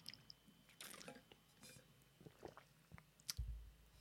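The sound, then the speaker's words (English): Someone takes a quick, quiet sip of a drink, with soft wet slurping and mouth clicks, a swallow, and a small clunk near the end. No one speaks. “Okay, we'll take a quick sip here, kind of get us back on track.”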